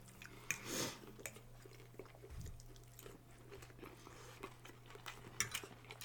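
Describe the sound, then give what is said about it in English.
Quiet chewing of crunchy, unbreaded Kung Pao chicken with vegetables, with scattered crunchy bites and soft clicks, over a low steady hum; no one speaks. “But the Kung Pao chicken had the crunch.”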